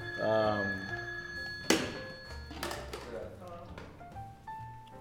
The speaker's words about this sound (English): Hold on, we're receiving a phone call. We're receiving.